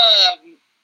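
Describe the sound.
A single loud cough with a strongly voiced, throaty tone, lasting well under half a second before trailing off into a brief low rumble, then silence.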